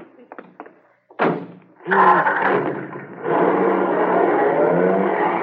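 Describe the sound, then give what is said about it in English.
A few light clicks, then a car door slams shut with a single heavy thunk, followed by a louder burst of noise and a steady, broad rumbling roar that continues to the end. “Yeah, well, here's the car. Get into it.”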